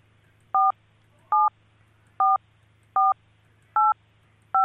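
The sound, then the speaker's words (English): Six touch-tone telephone dialing beeps as someone dials to patch a caller through, each a short two-tone chirp, sound one after another at a slightly uneven pace over a low steady hum, with no one talking. “Sorry, it's the beeps because I have to dial her.”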